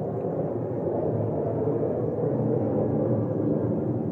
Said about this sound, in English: Is that... Wow. No, it's the plane. Outside. Oh, it's a plane?